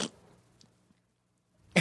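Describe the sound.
A mouth-made fart noise, a blown raspberry, sputters briefly at the start, then a second loud, breathy burst arrives after a stretch of near silence. No one speaks.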